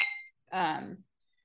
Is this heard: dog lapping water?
no